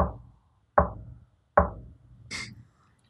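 Three loud, evenly spaced knocks on a wooden door, each with a short resonant decay, followed by a brief higher-pitched rustle or creak.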